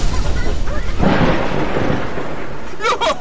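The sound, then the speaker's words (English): A loud, rumbling explosion of detonated charges bursts out about a second in, then rolls on as a heavy, crackling roar that slowly fades. A brief voice cuts in near the end. “Blow the charges!”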